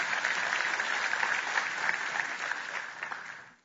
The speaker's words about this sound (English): Oh, I thought the applause was going to be longer